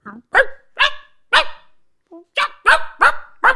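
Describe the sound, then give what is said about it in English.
A dog barks loudly, about nine sharp barks in quick, uneven succession with a brief pause midway, as if barking insistently without letting up. “No, I can't hear you're you you're making the dog this barking. Worse and worse and worse.”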